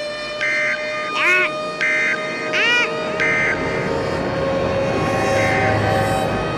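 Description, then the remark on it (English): A tornado warning siren right beside a house wails loudly during a tornado warning, cycling between steady high tones and quick rising-falling swoops in a repeating pattern that continues throughout, over a constant rushing background. “And the worst thing is our tornado siren is right beside our house.”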